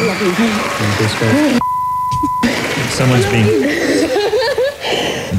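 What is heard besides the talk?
censor bleeps over swearing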